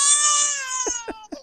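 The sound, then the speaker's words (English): A baby girl screams and cries in a loud, shrill, sustained wail that slowly falls in pitch, then breaks into three short, choppy sobs. “Despite the screaming, she's adorable. Screaming? I can't take the screaming.”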